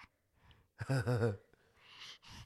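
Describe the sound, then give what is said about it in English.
A smiling baby gives a short, eager voiced gasp followed by quick, breathy huffs, fairly loud against a quiet background, with no talking. “That's the smile breathing.”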